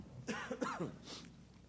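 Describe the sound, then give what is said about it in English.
Two quick, muffled coughs in close succession, subdued, followed by a brief breathy exhale; no talking. A preacher coughing with a handheld microphone moved away during a church service. “I guess it's good that I don't have the headset working so I can move the mic and cough, because I don't know how to reach and mute myself fast enough.”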